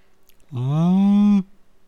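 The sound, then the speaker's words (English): A person voices a single drawn-out moo in imitation of a cow, fairly loud, holding a steady low pitch for about a second before stopping abruptly. “That was a very unconvincing moo.”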